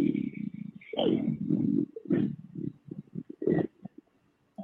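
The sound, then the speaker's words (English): A caller imitates a deep growling roar: a loud, rough, low rumble broken into several surging bursts with short gaps, tapering into quieter grunts at the end. “It's the roar off. It's the growl off.”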